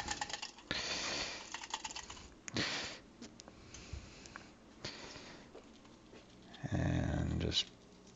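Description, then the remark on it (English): A boiled egg is twirled around inside a small, dry drinking glass to loosen its shell, making a busy stream of hard clicks and clacks in uneven bursts that swell into a louder, rougher rush near the end. “Just kind of twirl it around. You hear that? Loosens the shell.”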